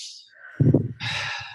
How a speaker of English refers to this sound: Good. Take another deep breath in and out. You're finally breathing. I love it.